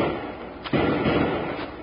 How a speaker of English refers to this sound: While Bill Hickok and Jingles, mistaken for members of a holdup gang, try to warn the stagecoach driver but draw a hail of bullets for their trouble. To make their position more dangerous, shots also come from behind them.